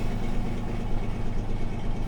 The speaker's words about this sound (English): You hear the truck engine start.